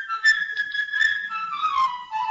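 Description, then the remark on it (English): A flute plays the bird's theme in Peter and the Wolf, a quick, bright, high melody with fluttering ornaments, holding a sustained note before gliding lower, bird-like and lively, with no voices present. “The bird will be played by a flute.”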